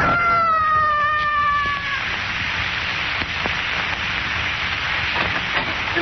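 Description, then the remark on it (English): A man's scream, as he loses his balance and falls 26 stories, slides downward in pitch and fades away over about two seconds, leaving a steady, noisy rush of background sound with a few faint knocks. “I heard a scream. It was …. Lost his balance.”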